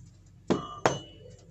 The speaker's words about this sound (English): Another knock. They're outside, I'm inside. Until I hear a shatter, I'm safe.